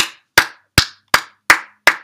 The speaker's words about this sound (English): I had to clap for the gem drop. I'm sorry.